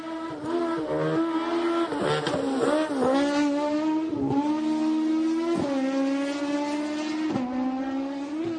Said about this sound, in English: Yeah, you can hear that straight cut box as he drives away. It's pretty amazing. Just banging gears at 11,000 RPM. So, it's like a motorcycle.